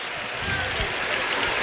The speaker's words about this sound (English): Listen to this crowd.